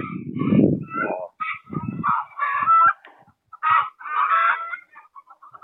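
Several chickens cluck and cackle, their short overlapping calls coming in busy bursts with brief pauses between, and no one talking.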